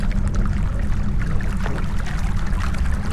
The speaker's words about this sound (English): There's a small stream of water coming from the wall.